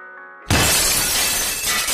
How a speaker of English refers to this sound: Glass shattered. The sight of the dark shadow that burst through the front window struck terror in everyone's hearts, but it struck even deeper in hers.